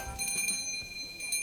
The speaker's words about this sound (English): But the tinkle of the shop bell indicated he had no such luck.